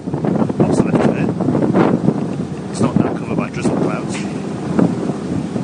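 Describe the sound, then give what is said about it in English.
Steady wind buffets the microphone aboard a launch on a lake in the English Lakeland landscape in cold, wet, drizzly weather, a constant rushing roar with gusty surges, while voices speak intermittently beneath the noise. “Because you just so love to be on boats anyway, don't you?”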